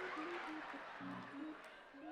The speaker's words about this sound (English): Stop clapping like you done it.